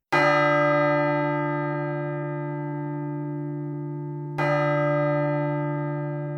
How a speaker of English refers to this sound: Well, it's a wrap. The bells, that's our signals to wrap up the show.